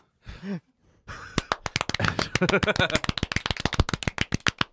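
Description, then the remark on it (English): After a short vocal sound and a brief pause, loud, rapid clapping bursts in: dozens of sharp, irregular claps piling up for several seconds, with voices faintly underneath. “That is an unrealistic amount of clapping.”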